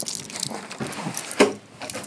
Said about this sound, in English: Okay. Key in the door.